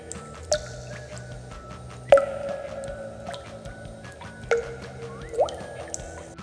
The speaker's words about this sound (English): Dripping water in a cave.